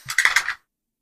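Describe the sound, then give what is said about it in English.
A quick clatter of several dice tumbling across a table, a burst of bright clicks lasting about half a second before stopping abruptly, fairly loud. “And so many dice now.”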